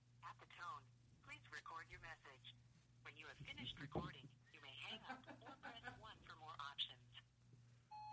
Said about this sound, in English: No, we're calling Rory Scovel. The phone is ringing. Of course, we can only let it ring 68 times. That's our limit.